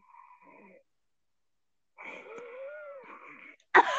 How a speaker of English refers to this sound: Why do they wheeze when they cough? That was not coughing. That was puking.